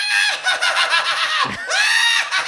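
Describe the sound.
A voice imitates a shrill, witch-like cackling scream: loud, high-pitched, and wavering in rapid pulses, with a brief break midway before the cackle resumes, with no other talk.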